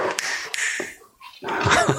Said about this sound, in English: oh my God, there's the dogs. I love it.